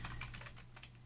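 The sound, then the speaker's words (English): Rapid typing of notes on a computer keyboard, a quick run of soft clicking keystrokes, fairly quiet, over a low steady hum. “I'm typing at the same time because I wanted to write this down so I didn't forget it.”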